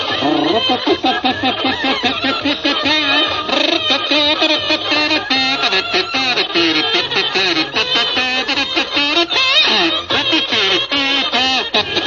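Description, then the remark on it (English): Loud, continuous duck quacking fills the whole stretch, nasal and raspy, with many overlapping calls in a dense, jittery chatter that never pauses. “Cut out that quacking.”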